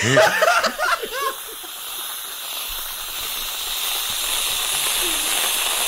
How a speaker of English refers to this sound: That is whipped cream at the end, if you couldn't tell.